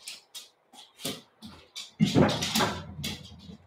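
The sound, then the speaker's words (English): Dog noises during a live video: a string of short, breathy snuffles and yips, then a louder, longer stretch of whining and rustling. No one speaks. “We had one he left when the dog showed up.”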